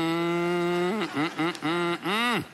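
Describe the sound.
A person imitates a cow with drawn-out, nasal mooing: one long steady low moo, a few shorter broken lowing sounds, then a final moo that swells and falls away, fairly loud.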